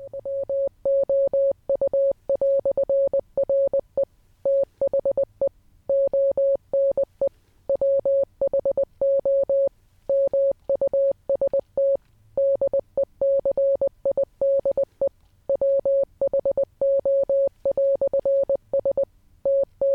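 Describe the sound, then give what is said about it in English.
A steady, clean beeping tone keyed on and off in short dots and longer dashes, running continuously as a Morse code message, loud and alone with no voices. “In Morse, that first sentence would have sounded like this.”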